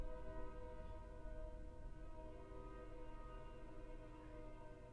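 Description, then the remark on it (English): A train horn blares a sustained, dissonant chord for the full length, loud and steady with rich stacked tones moving from E to E flat, G, and C down to B, over a low rumble, no voices present. “Also, Train. Train. What a beautiful dissonant. Wait. Chord.”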